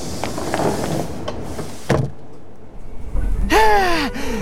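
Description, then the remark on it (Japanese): Train doors slide shut with a muffled thud over steady station rumble, then a brief squealing, wavering whine follows as the doors settle. “が閉まります。ご注意ください。駆け込み乗車は危ないですからおやめください。”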